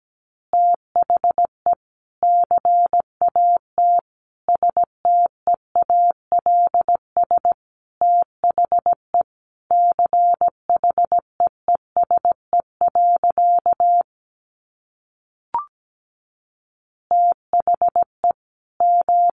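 Morse code at about 17 words per minute: a steady mid-pitched tone keyed into quick dots and dashes, grouped into words with short gaps, a longer pause and a faint click near the end.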